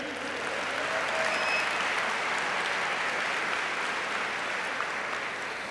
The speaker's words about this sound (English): Let's clap it up for this pioneer.